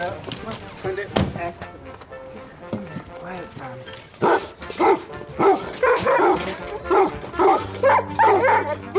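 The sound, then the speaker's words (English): Weimaraner dogs, including one named Thunder, bark in repeated, fairly loud bursts, picking up over the second half with a few yips and whimpers, while people talk and a steady hum runs underneath, just past Clontarf bus station garage heading towards the wooden bridge to the island. “I have Weimaraner dogs.”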